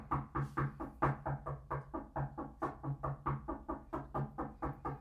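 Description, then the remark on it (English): A voice imitates rapid, sustained knocking on a house door: a steady run of about four quick knocks per second, moderately loud, going on without pause for several seconds. “That's my usual sustained knocking.”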